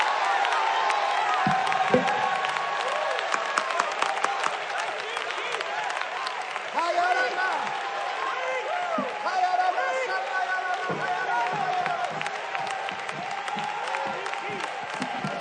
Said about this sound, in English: Somebody clap your hands and shout. Clap your hands and shout.